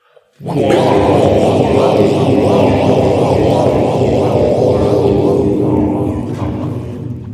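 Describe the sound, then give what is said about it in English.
A loud whooshing sound effect marking a flash-sideways scene transition swells in abruptly and roars steadily for several seconds with a faint pulsing texture, then eases off slightly toward the end. No one speaks. “The flash sideways sounds.”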